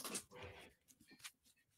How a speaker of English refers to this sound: Watch out. Did you wheel over a puppy? I'm running over puppies.